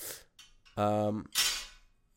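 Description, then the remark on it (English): A glass is set down on a glass table with a sharp, bright clack, then a second hard clink follows a moment later, with a short burst of voice between them. “So loud on my glass table.”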